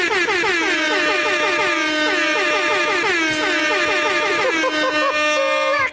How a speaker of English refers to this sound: It had to end like this, in a quadruple air horn.